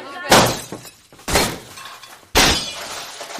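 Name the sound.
glass windows shattering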